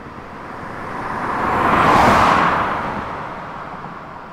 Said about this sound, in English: That's one of the straight-on ones. So that one is pointing the mic. It stays still. The car passes the mic, but the mic does not move. I see. That one, you can tell that the pass is much faster.